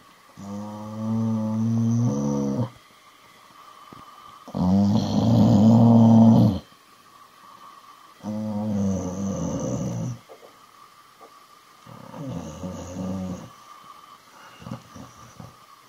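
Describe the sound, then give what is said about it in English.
Manny, a dog, grumbles and growls in four drawn-out, throaty bursts, each a couple of seconds long, separated by short quiet pauses; the second burst is the loudest. “Let me check with Manny, one of my dogs.”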